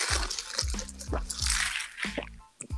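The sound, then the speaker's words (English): Water pours steadily, a bright splashing hiss broken by a quick series of low, gurgling glugs that ends in a brief pause and a final splash. “I'm going to ask a question here in a second, but I got to get some water.”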